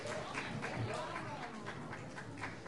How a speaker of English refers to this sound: So anyone that's been working hard at school or done exams, if you'd like to come forward and help yourself to something from this bag. Big round of applause. I know you've been working so hard.